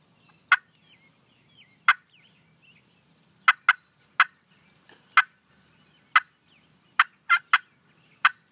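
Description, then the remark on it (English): About a dozen short, sharp turkey clucks from a handheld turkey call, spaced irregularly and some paired close together, loud, with faint birdsong in the background and no talking. “And then a plain cluck is just going to be just a short”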